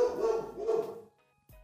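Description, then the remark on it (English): Pet dogs bark loudly in two quick bursts, one right after the other, with a brief pause before another sharp bark begins at the end. “As you hear my dogs barking in the background, my dogs apparently agree or disagree with me.”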